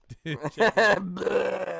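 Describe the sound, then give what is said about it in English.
A deep, drawn-out belch rumbles fairly loud, with a few short throaty grunting bursts just before it. “That was the basiest belch ever, dude. Dude, check this out.”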